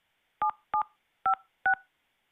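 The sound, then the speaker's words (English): Four short telephone keypad tones, each a bright two-pitch beep, pressed at a slightly uneven pace, entering a zip code on a call to the Minute Key Locksmith Services support line. No voices, with silence between the presses. “Please enter your zip code, and we will get you in touch with the...”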